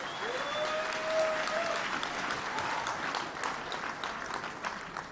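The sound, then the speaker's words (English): An audience claps hands for Jesus in sustained, dense applause, a steady wash of many overlapping claps that holds throughout, with a faint tonal whine sliding through early on. “Clap your hands for Jesus if you can.”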